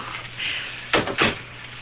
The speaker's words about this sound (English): All the same, I forced myself to knock at his door.